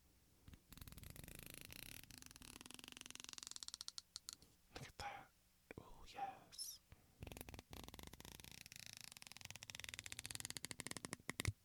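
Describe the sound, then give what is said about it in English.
Fingers run along the teeth of a two-sided comb, making rapid ticking rasps in several long strokes with brief pauses, some passages sounding finer and denser than others. “This is a two-sided comb. Can you hear the difference between the sides?”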